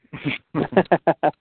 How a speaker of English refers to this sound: I gotta turn this dog down.